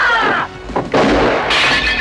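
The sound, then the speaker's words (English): Dishes smashing in a loud, rapid series of crashes, with sharp shattering bursts and bright ringing shards of breaking crockery; there is no talking. “Dishes are done, man.”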